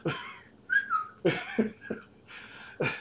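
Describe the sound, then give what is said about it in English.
A person whistles a brief falling note, a short two-part glide, surrounded by breathy, puffing bursts of air. It sounds fairly quiet, with no talking. “Put parentheses, whistles. Whistle.”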